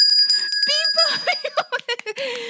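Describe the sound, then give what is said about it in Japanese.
A bright, ringing quiz-show chime signals a correct answer to a question about the meaning of the Japanese term 'manner mode', its tones holding for about a second before fading under lively talk and light laughter. “ピンポンピンポンでございます。”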